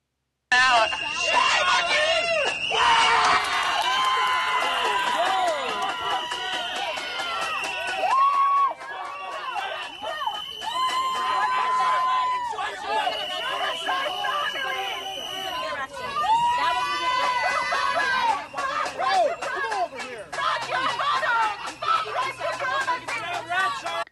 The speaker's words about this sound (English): Hear that? They're shouting, "Fuck white supremacy."